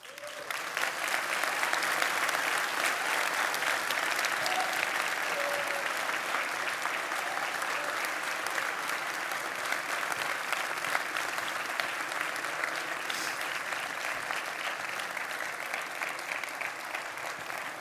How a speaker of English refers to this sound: You'll notice that the people around you, without prompting, started clapping for you. I told you, it's kind of a corporate thing that we do.